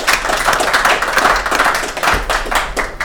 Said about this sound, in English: Okay, round of applause, everyone.